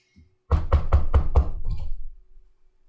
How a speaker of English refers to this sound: Okay, you knock a few times, and the door is pushed open slightly by the force of your knock. And then you hear, in response, a loud rapping that doesn't stop. It just keeps going.